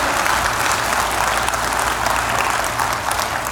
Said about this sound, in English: Can you give them a huge round of applause? Well done, man. Thanks, guys. Thank you. Well done.